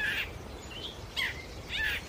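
A grey catbird calls at Bombay Hook National Wildlife Refuge in Kent County, Delaware, in a run of varied, scratchy chirps and whistled phrases, mimicking other birds, with short bursts roughly every half second, over a low, steady outdoor rumble.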